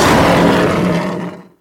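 A single loud lion roar, raspy with a deep rumbling growl, sustained for about a second and a half before trailing off abruptly. No voices accompany it.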